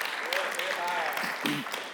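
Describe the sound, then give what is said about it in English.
A church audience claps hands to the Lord in a dense, steady wash of applause that fills the whole clip, with a few voices calling out over it. “Clap your hands to the Lord today.”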